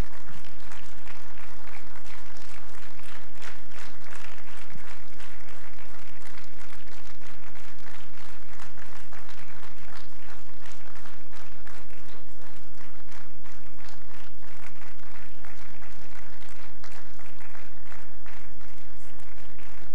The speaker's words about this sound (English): Let's put our hands together for him. Yeah, let's continue clapping until he comes to the podium.